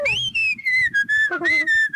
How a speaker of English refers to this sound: And … was walking along whistling.